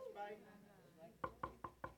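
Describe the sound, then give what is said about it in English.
Four quick, evenly spaced knocks on a door ring out crisply, following a moment of indistinct voice at the start. “You're going to be knocking then. Can't get in.”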